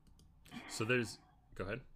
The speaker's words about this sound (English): I'm actually trying to find it, and I hate that this can hear everything that I'm clicking.